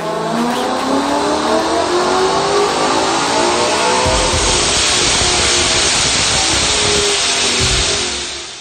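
A supercharged V8 Mustang engine revs loudly and close by, its pitch climbing and falling in sustained pulls, with a bright, whining edge over the deep rumble and no voices.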